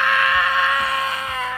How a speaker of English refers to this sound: Bobby then adjusts the flame and it shoots up into Leo's face. He erupts in a scream and covers his face with his hands.